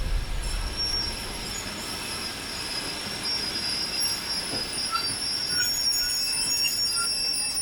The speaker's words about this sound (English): The night still doesn't go smoothly. I wake up all the time because of the railway noises and stupid dreams.